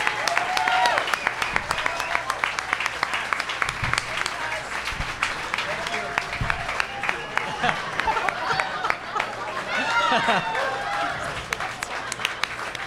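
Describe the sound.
Sustained applause from a crowd for Kate Flannery and Oscar Nunez: dense, steady clapping that stays loud for the whole stretch, with scattered cheers and voices rising through it.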